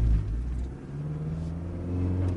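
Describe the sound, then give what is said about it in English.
A car engine starts up and hums steadily as the vehicle pulls away gently, a low rumble with its pitch slowly rising as it gathers speed, with no voices. “Okay, well, we'll accelerate away gently.”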